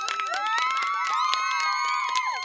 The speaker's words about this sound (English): Insert cheers, applause.